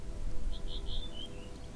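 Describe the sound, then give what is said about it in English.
A short series of soft, high-pitched chirps from birds in the trees, four or five quick notes in a row, sounding faintly over a steady low rumble of background noise with no voices. “You notice the birds singing in the trees, softly chirping and singing songs of their simple happiness.”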